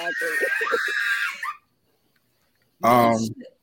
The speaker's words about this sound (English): was that somebody screaming?